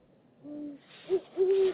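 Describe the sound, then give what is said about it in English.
Owls hooting at night under moonlight, recorded on a phone: three low, steady hoots, the first smooth and drawn out, the second short, the third long and slightly stronger, over a faint background hiss. “Eventually, I asked for permission to take out my phone and record a little of this magic.”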